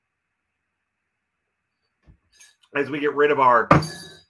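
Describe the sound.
Glasses clink together once in a toast to baseball prospect Mason Wynn, who just turned 21, a bright ringing tap that lingers briefly, coming right after a short stretch of someone talking.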